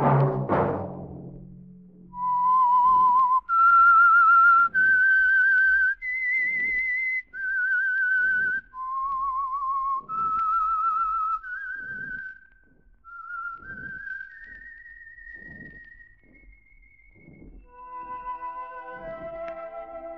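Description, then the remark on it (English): A clear, loud whistled melody, the signal for the Signal Oil program The Whistler, of long held notes rising and falling in steps, with soft rhythmic thumps of accompaniment underneath and no talking. “That whistle be your signal for the Signal Oil program, The Whistler, each Wednesday night at this same time.”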